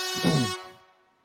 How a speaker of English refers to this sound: What about an air horn? Can you hear an air horn?